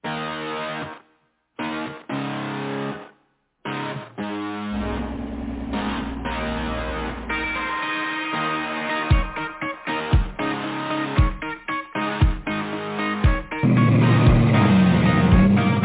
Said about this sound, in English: here is the title track to … new EP, …